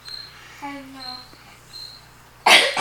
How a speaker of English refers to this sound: Don't cough into the mic. Turn your head if you get caught. You just blew somebody's speakers out of their car.